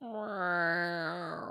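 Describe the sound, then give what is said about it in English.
A single long, drawn-out meow from Jess, Pat's cat in the cartoon Postman Pat Takes the Bus, sad and plaintive, holding a steady mid pitch for over a second before sagging slightly at the end, heard alone without talking. “That was a very sad meow.”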